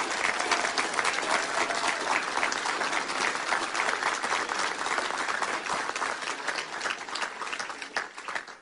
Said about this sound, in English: So tonight, I want to ask all of you to join me in giving Jim and Debbie Hood a round of applause for their service.